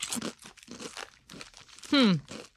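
Crisp crunching on an everything-bagel-with-cream-cheese flavored potato chip with poppy seeds, several quick bites in a row, followed by a brief loud vocal sound near the end.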